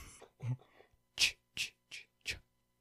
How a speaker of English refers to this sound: You're not going to say God bless you? Fuck you. Yeah, I know, right? That's how I sneeze, bro.